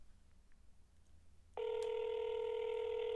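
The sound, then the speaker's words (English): Faint room noise, then about halfway through a loud, steady telephone dialing tone cuts in as a call is placed to Starbucks, holding unbroken until the end, with no one talking. “So no one's really going to know if we're really calling Starbucks or our friend down the hallway is answering the phone.”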